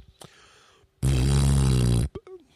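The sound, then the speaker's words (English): A voice imitates a fart with the lips: one loud, buzzing raspberry lasting about a second, with soft breaths and mouth clicks just before and after. “like air was being pushed through two little tight flaps, like when you make a fart sound with your mouth”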